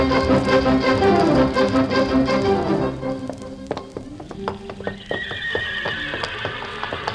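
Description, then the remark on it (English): Loud, wavering horse whinnies fill the first few seconds, then fade into a steady run of sharp hoof clops on a hard surface, with no voices present, setting the scene of the paddock at Churchill Downs 20 minutes before the big race. “The opening scene is the paddock at Churchill Downs, 20 minutes before the big race, where we find El Chico, Johnstown, Technician, Shaladon, Heather Broom, On Location, and all the other entries chewing the fat.”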